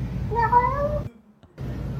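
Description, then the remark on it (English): A single drawn-out cat meow with a wavering, speech-like inflection, fairly loud over a steady background hum that briefly drops out afterward. “Listen to this cat. Listen to what it sounds like.”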